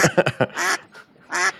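A duck quacks: four quick, clipped quacks in a rapid burst, then two longer, drawn-out nasal quacks. Loud, with no talking.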